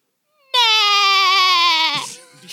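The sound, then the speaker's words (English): A single voice imitates SpongeBob's laugh: one loud, nasal, wavering note held for about a second and a half, sounding much like a goat's bleat, then trailing off. “I can do SpongeBob to laugh.”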